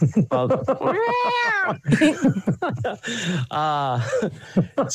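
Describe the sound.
A person imitates a cat with two drawn-out, wavering meows, loud, separated by quick bursts of talking and light chuckling.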